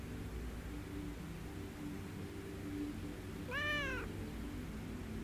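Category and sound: animal, cat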